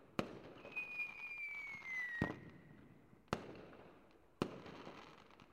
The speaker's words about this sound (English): Play some fireworks.